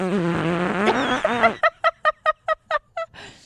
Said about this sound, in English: That, you know, I'm getting calls from everybody that was the best fart.